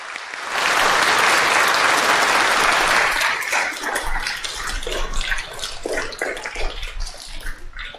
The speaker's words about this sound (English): And you, I just want this congregation to give a round of applause for it.